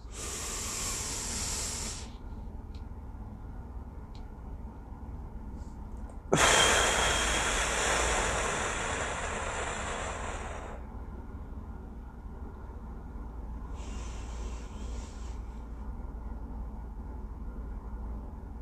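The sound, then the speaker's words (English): Slow, deep breaths in a 4-7-8 breathing exercise: a brief airy breath, then a long, loud rushing exhale that fades, followed after a pause by a softer breath, with no talking. “Breathe in for a count of 4. Hold it for a count of 7. Out for a count of 8.”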